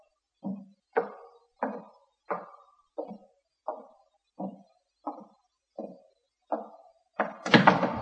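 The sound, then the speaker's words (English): A skeleton key rattles in a lock with about ten evenly spaced clunks, then a louder scraping burst as the door swings open. No voices. “Well, here's the door. I'll use the skeleton key.”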